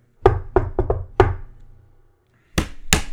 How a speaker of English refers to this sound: Yeah, so for those of you that don't know that little knock rhythm, whatever, it's called Shave and Haircut. It's a comedic little tune that basically is a famous, what's called it's a seven-note thing.